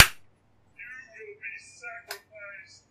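One sharp hand clap rings out at the start and decays quickly, followed by a string of warbling, electronic-sounding tones with a second crisp snap partway through.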